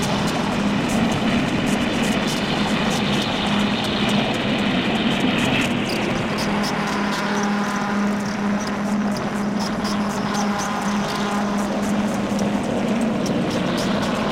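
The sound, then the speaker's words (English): A modular synthesizer doom noise patch roars for the whole stretch. A byte beat fed into a VCF3DB is modulated by the Swamp, a Black Wavetable VCO and a Pico RND. It gives a low steady hum beneath harsh hiss, with rapid clicking pulses flickering through the upper layer. No voices. “I hope you enjoyed this just doom noise session.”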